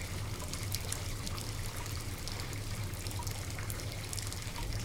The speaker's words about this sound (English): We should really turn the water off.